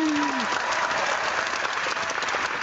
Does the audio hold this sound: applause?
yes